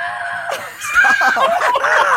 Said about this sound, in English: Stop. What is he screaming? Clean that up. What are you doing? Sounds like a cartoon character. He's like, he's climbing under the table screaming. What the heck?